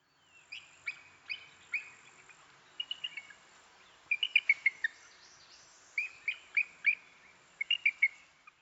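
A bald eagle calls with a series of high, thin piping notes, delivered in quick stuttering bursts of three to five with short pauses between, clear against a quiet background.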